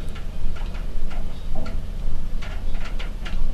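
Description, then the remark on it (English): Rain pattering on a windowsill on an October morning in Warsaw: scattered, irregular light taps and ticks over a steady low background hum, with no voices. “I think you can kind of still hear the patter of the rain on the windowsill or something.”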